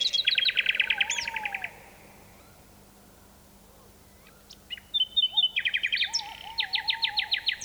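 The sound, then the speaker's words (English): A nightingale sings in a deep valley in Dorset, England, in 1982, in bursts of rapid, repeated chirping notes separated by pauses and liquid whistles, sounding open and slightly reverberant as if carrying across wide terrain; a tawny owl joins in. “This nightingale song echoes across a deep valley in Dorset, England, and a tawny owl joins in.”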